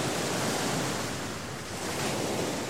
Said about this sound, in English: I stood on a black sand beach at sunset. Brilliant turquoise waves lapped at my toes.